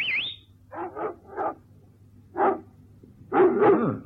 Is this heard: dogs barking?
yes